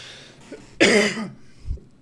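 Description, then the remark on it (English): A single sharp, harsh cough bursts out loud, followed by a brief raspy tail and a soft throaty rumble, with no talking around it. “I need a fucking cough button.”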